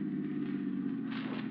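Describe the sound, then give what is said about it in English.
A car engine hums steadily at a low pitch, with a rougher, hissing texture swelling in toward the end as it turns up the tree-lined driveway of Medford Manor at night. No voices. “The car turns up the tree-lined driveway.”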